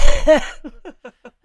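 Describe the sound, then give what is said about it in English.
A person lets out a harsh, loud cough, followed by a quick series of short, fading vocal bursts, a voice playfully imitating a horse. No speech. “Anybody need a coughing horsey?”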